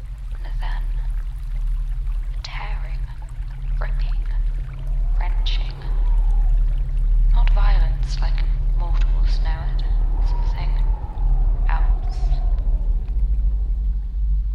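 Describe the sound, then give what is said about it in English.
Rushing floodwater pours steadily with a deep, continuous rumble that fills the whole scene, while muffled, indistinct vocal sounds rise and fall over the churning water. “Flood.”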